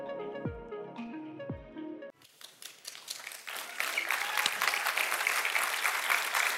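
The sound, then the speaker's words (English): A short musical sting with sliding tones gives way to a church audience's applause: dense, steady clapping that swells louder and keeps going to the end, with no voices over it. “All right, I see you clapping before I even say anything.”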